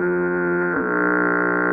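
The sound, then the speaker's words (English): A loud foghorn blast, one continuous deep, buzzy tone rich in overtones that holds steady and shifts slightly in pitch partway through, with no voices. “All right, let's get an honorable mention, Foghorn.”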